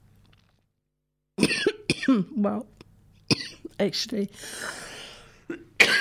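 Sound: coughing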